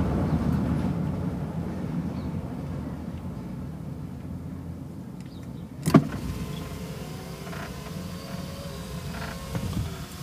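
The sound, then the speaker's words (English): A car's electric windows whir as they roll down while driving, over a steady low engine rumble inside the vehicle, with a sharp brief clunk partway through. “And I need to be refreshed with my windows down.”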